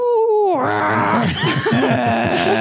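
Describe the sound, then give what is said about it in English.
A person vocally imitates an owlbear's hoot-growl: a high, falling hoot that drops into a long, rough, throaty growl, loud and sustained for a couple of seconds. “But you have to learn to hoot growl.”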